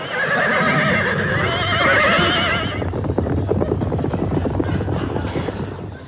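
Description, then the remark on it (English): A herd of zebras at the Atosha Pan panics, whinnying in overlapping, wavering high-pitched calls for nearly three seconds, then gives way to a loud rumbling clatter of many hooves stampeding. “Suddenly, the shoe store where they work goes bankrupt. And the herd panics.”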